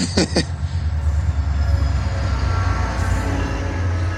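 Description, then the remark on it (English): A loud, steady rumble of a train rolling past, with heavy low-end roar and faint metallic squeals, preceded by two brief sharp clacks at the start. “Oh, here comes a train.”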